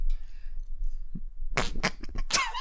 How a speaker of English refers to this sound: Oh, for fuck's sake, man. Oh, was that you or the fart? I farted. Oh. I farted. I did a fart, man.